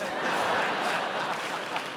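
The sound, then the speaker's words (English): An audience at a live performance claps steadily for a couple of seconds, applauding the mention of the U.S. Paralympic soccer team, a dense, even wash of many hands with faint crowd murmur mixed in. “Could have used those 18 claps.”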